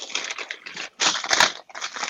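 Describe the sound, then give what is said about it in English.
Grocery bags rustle and crinkle in irregular bursts, a bright papery-plastic crackle that pauses briefly twice before starting up again. No one speaks. “Somebody ruffling through groceries?”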